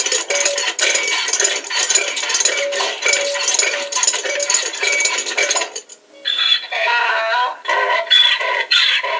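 A car rattles loudly while being driven home, a dense, steady metallic clatter that dips briefly, then returns as rougher, more uneven clanking with higher jangling tones. No one speaks.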